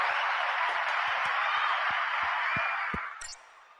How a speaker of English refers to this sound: Let me give us a round of applause, bro. Hold on. Round of applause. We need a round of applause this month.